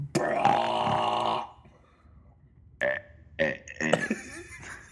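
A person attempts to imitate someone else's high, treble burp: a long, forced burp with a strained, higher-pitched edge opens, followed after a pause by several shorter, choppy burp-like grunts.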